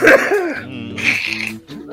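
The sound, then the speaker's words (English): Loud coughing from two men, with raspy, wheezing breaths and throat-clearing sounds between the bursts, filling the whole moment without any talking. “See, both you guys are coughing because you're coughing up holocrom cum.”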